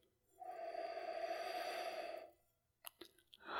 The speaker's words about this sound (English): And on the nose, just from opening the bottle and pouring it, I got some citrus notes, but let's really get the nose in there and give it a whiff.